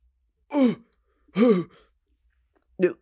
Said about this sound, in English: oh my God, the hiccup.